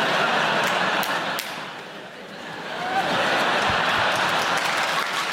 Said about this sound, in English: Sometimes people start rounds of applause and they lose confidence. You know, they go, oh, no one else joins in.